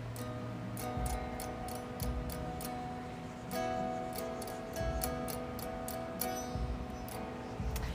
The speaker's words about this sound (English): I'm going to see if y'all can hear the way that the electric guitar sounds on the headphones